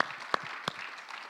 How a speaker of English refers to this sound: Let's give the Lord a mighty hand clap. Let's make our webcast audience feel welcome, the church in the balcony.